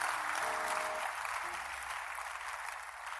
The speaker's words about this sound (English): If you can clap again, I will remove you from the suspicion list.